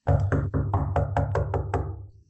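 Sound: knocking on a door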